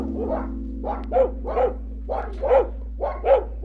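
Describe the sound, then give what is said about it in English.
Dogs that have climbed inside the luggage bay of a coach bark repeatedly beneath the passengers in a steady series of sharp, mid-pitched barks, roughly six or seven in a row, with a low constant hum underneath and no talking. “We heard dogs coming closer to the coach and barking, and we understood that they had climbed inside the luggage bay.”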